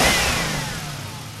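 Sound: car engine revving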